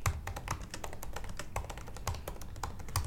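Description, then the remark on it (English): Rapid typing on a computer keyboard, a steady stream of crisp key clicks with uneven rhythm and no voices. “This is great recording, just a lot of tippy-tap typing.”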